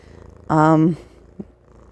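cat purring

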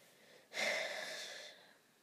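heavy breathing into microphone

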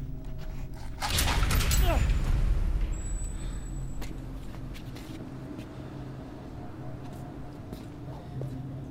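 door being opened

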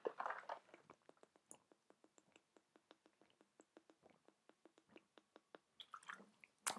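drinking water

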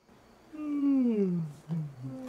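sneeze

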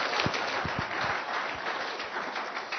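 audience clapping

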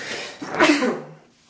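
sneeze

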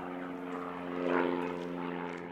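propeller aircraft flying overhead

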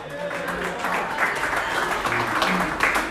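audience applause

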